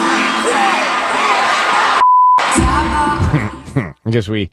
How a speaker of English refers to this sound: then this is the version from a concert.